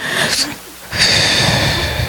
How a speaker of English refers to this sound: I didn't know breathing was so important, but I learned that. Breathe in, breathe out.